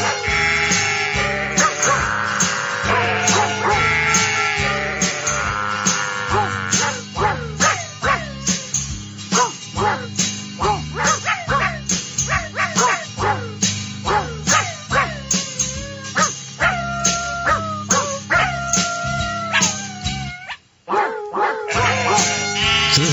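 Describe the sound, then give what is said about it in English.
Dogs bark and howl in a steady rhythm that forms a tune, opening with drawn-out howls and then a loud run of pitched barks shaped into a melody, with a hint of goat and sheep sounds. “The dog song, right? With just a hint of goat and sheep on the side.”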